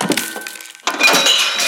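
A glass pane shatters with a sudden loud crash, followed by a spray of bright, high tinkling shards, after a stretch of dull rattling and knocking. No one speaks.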